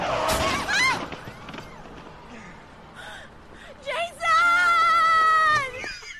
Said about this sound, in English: Yeah. But he gets hit in the back with a car. It was very weird.